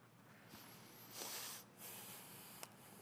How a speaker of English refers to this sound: Bless you.